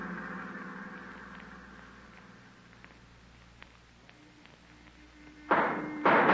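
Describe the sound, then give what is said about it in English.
A car's running engine hum outside a hotel fades while a few faint sharp gunshots pop, followed by two loud, harsh bursts right at the end. “Those shots.”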